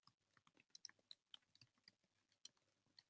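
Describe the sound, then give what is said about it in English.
Rapid, irregular clicking of keys on a computer keyboard, a quick run of light taps with short pauses, no voices. “If you hear the keyboard, that's because I'm typing.”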